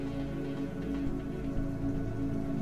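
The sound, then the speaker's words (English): Steady rain falls on city pavement, a constant, even hiss with a low droning hum underneath and no pauses or voices. “The rain provides a constant background noise.”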